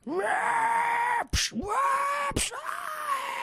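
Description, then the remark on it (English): A voice imitates a strong-style wrestler's fighting-spirit scream: three long, strained yells, each cut off by a sharp intake of breath before the next one rises and sustains. “The I take an ass whipping and is like, I'm going to scream at you now.”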